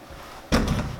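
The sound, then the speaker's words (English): A chair is set down with a sudden thump, followed by a short scrape or shuffle as it settles into place, fairly loud after a quiet moment; the chair is placed for demonstrating squats. “Start with a chair and sit down into it. So take this chair right here.”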